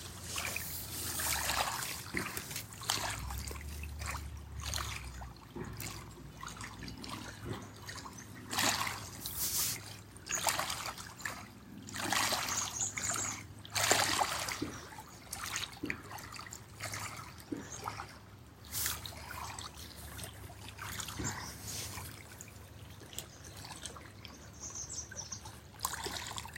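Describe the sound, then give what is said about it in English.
Water trickles and splashes steadily over rocks in the sun, a continuous babbling with small irregular bursts and no voices, sustained at a moderate level throughout. “Sharing the sounds of the water and the warmth of the sun, the stability of the rock.”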